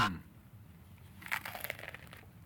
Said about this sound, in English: This is a crunchy motherfucker, dude. KFC has the flaky, crunchy chicken like that.